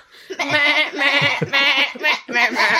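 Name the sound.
person imitating sheep bleating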